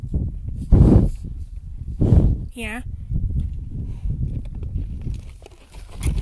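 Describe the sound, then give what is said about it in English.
A 31-year-old horse on a ranch shifts about, with two heavy, muffled hoof thuds over a low outdoor rumble, and a brief spoken word cuts in between them. “Did I hear you're the oldest horse on the ranch?”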